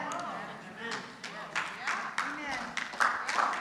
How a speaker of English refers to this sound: It's okay to clap.